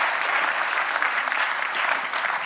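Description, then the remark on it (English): An audience claps steadily, a dense, even wash of applause that stays at a constant loud level for the whole moment without any voices breaking through. “yes, you can clap for sure.”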